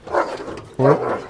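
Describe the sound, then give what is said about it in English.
Two deep, loud, unfriendly barks from a couple of very large dogs, the second starting abruptly and sounding fuller and more resonant than the first. “Oh, there's a couple of large dogs there.”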